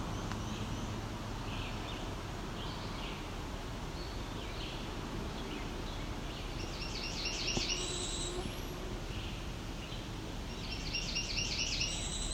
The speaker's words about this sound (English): Okay, so taking a look at one of the apps, and it doesn't sound spot on for Northern Perula, but it does sound close to a cerulean warbler, which makes us even more curious, because that's pretty rare, especially this far north, I would think.